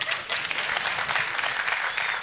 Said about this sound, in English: Y'all notice I ain't have to look. I knew that was my wife clapping. I pay her to do that. Literally.